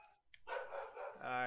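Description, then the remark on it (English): Dogs bark loudly in a quick run of sharp, tonal yaps, ending on a longer drawn-out bark, with some voices mixed in beneath. “See, look, the dogs heard NFT and now even they're mad about it.”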